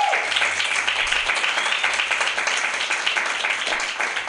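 A crowd claps steadily, a dense, sustained wash of applause that stays loud and even for several seconds, with faint cheering mixed in, at the end of a comedy show at a festival.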